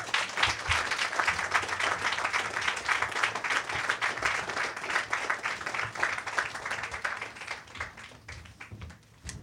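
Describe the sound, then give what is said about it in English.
Sustained applause from an audience for a debuting performer, dense overlapping claps forming a steady roar that holds for several seconds before gradually thinning out toward the end. “All right, another round of applause”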